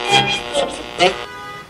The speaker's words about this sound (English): It's an unseasonably hot spring morning in 1972. Inbound rush hour traffic on I-75 and on 94 is delaying some DAC members who want to hit the club before their downtown workday begins.